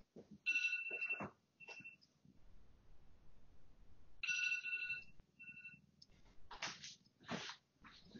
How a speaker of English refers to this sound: Sorry, my fiance's phone alarm is going off. Let me just shut it off. I'll be right back.